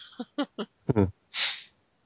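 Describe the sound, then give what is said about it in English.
A few short nasal, voiced snorts lead into one longer, hissing nose blow that swells and fades within about half a second. “Why the hell is she blowing her nose?”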